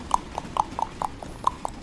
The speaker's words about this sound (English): Oh, I'm riding. You're into riding a horse.